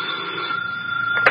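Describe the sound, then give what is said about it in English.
A telephone rings with a steady, bright electric bell tone that sustains throughout, ending in a brief sharper burst, with no voices present. “It's for you, Inspector.”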